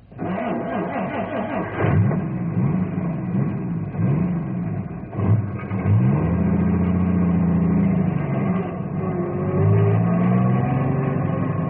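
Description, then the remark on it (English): A truck engine revs hard, its pitch surging and dropping several times before it settles into a steady, loud drone as the truck is moved and pulls away in freezing cold weather. “Ice strong enough for cars, but not for a truck.”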